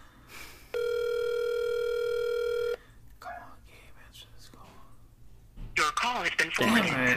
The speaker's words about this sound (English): I hate that nobody ever answers our call. I know nobody ever answers.